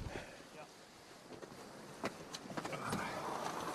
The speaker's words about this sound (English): We better get out of here before we actually blow out of here. Yeah, no, that's a good gust now. Don't fall. That is a good gust.